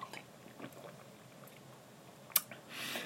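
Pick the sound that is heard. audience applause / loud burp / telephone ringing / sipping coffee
sipping coffee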